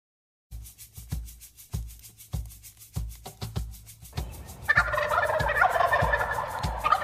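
A wild turkey gobbles loudly, its rattling calls building into a dense, sustained burst of gobbling after a series of rhythmic thumping beats, with no one speaking.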